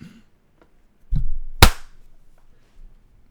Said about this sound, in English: Okay, okay. Let's all clap when it reaches the minute mark. Okay. So okay. In like 5 seconds.